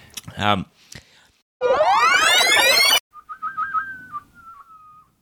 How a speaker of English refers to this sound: No, I was just whistling. Oh, I swear I could hear two different whistles. Yeah, it was me.